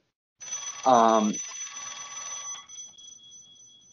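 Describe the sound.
An old-style dial telephone bell rings once with a bright metallic jangle that lingers and slowly fades, while a short voiced sound briefly overlaps near the start.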